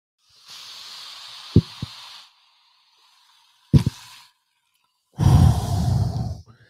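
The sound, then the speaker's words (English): Ginger ale mixed with Tito's vodka hisses and fizzes in short bursts in a goblet, with a couple of clinks and taps, ending in a fuller, louder rush of liquid being poured. “Simply some Tito's and ginger ale out of the goblet.”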